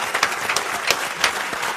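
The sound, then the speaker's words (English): An audience applauds for Real MC on Sway in the Morning, Shade 45, with a dense, steady patter of many hands clapping, moderately loud and sustained without any voices over it. “Yo, round of applause for Real MC.”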